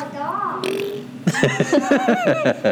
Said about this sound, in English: Stop farting with your mouth, mama. You farted.